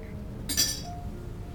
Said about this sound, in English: So because I've had this before, I'm just going to add a few drops to each one of these of water, just because I know it can take it.